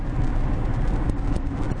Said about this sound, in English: We are recording in the car. On the move. On the move, while it's moving. Well, we're not moving much now. Of course, we are in New Jersey. We are on the Garden State Parkway heading south.